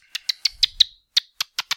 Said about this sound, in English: No, you need to just shush. Sorry about that, listener. It's just my dolphin likes to just...